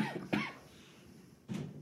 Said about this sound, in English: Cough streak is alive and well.